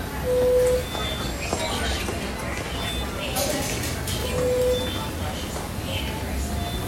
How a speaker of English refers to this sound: What was the alarm that you just heard? What's the alarm we're just hearing right now? So there's a couple. One is a bed alarm, meaning that the patient has adjusted themselves in the bed and they want the nurse to know that